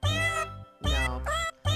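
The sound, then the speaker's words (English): Synthetic cat meows arranged into a Christmas song, several sustained, pitched meow notes strung together melodically with brief gaps, loud, clearly artificial rather than real cats. “I mean, are we gathering around the radio in the fireplace with the meowy cats?”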